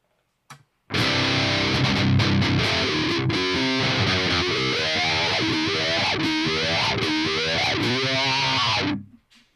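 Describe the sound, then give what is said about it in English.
A loud, heavily distorted electric guitar plays through a wah-wah pedal for about eight seconds, its tone sweeping repeatedly between muffled and bright as chords ring out, with no talking. “Not going to lie, at first I forgot my foot was on the wah, and then I was like, hey, that's the wah-wah under your foot.”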